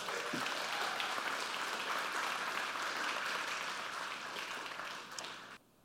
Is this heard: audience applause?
yes